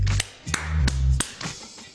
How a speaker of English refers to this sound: Clapping our hands together to simulate the end of something or the emptiness of something. So it could be an argument, you go, that's it, I'm done.